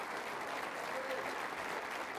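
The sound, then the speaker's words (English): Steady, dense applause from a crowd praising God and thanking Senator Rick Santorum, a continuous wash of many hands clapping at an even, fairly loud level throughout with no pauses. “Come on, we know how to clap around here.”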